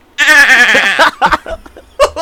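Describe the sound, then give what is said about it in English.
A person does a loud sheep impression: one quavering, nasal bleat lasting about a second, followed by a few short bursts of laughter and breathy chuckling. “Could you imagine you orgasm like a sheep?”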